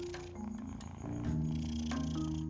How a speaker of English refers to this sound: Can you hear his motor? He just turned his head like, he could hear his little motor. He's purring. He's like, he's a mighty, mighty, mighty man.